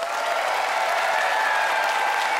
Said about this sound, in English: Let's see what the audience has decided. By applause